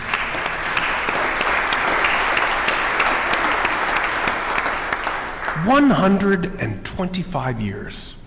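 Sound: audience applauding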